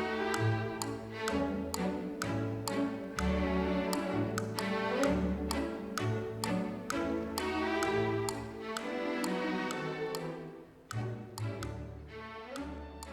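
Light orchestral music with bright strings and a bouncing bass line, driven by a steady, crisp tick-tock rhythm like a clock keeping time throughout.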